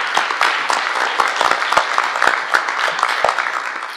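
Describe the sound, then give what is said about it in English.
Steady applause from a large crowd at an evening election candidates' event fills the whole stretch, a dense wash of many hands clapping with sharper individual claps popping out, even in loudness throughout. “We have a great crowd tonight, and I want to give you guys a hand for coming out.”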